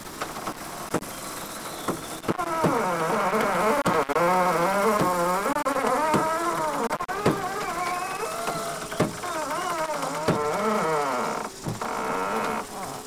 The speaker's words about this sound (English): Those are my bowels as we head into a danger zone. No, they're not really, of course. That was just the ratchet and the ropes tightening up.